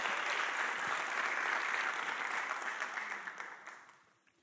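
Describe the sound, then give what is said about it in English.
An audience breaks into loud, sustained applause mixed with cheering, given as a cheer for God, a dense wash of rapid clapping that holds steady for several seconds before thinning out and fading away at the end. “Come on, let's give a cheer for God.”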